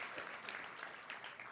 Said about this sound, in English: come on, Angelinos, put your hands together. Let's thank God. Even if you don't really care, come on, just keep clapping. It feels good.